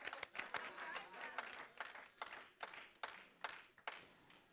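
A lone person at the back of the crowd claps steadily, about a dozen sharp claps spaced evenly, over a faint background murmur of the room.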